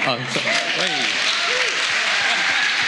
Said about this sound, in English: Well, I think the applause is for that guy up there,